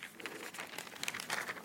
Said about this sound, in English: Excuse me, I turn the page here.